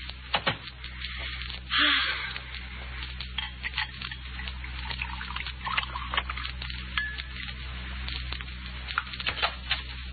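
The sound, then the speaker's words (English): Orange juice pours into a glass with a soft, splashy trickle, backed by a steady low hum and scattered light clicks and crackles, fairly quiet. “Here, I poured you some orange juice.”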